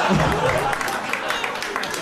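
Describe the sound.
An audience claps steadily, a dense wash of many overlapping hand claps at a fairly loud, even level, with a voice briefly audible underneath at the start.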